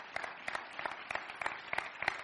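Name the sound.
audience clapping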